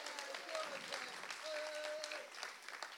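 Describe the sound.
A crowd claps steadily for a few seconds, a dense, even patter of many hands filling the room at moderate loudness, with faint voices and a whistle-like tone mixed in.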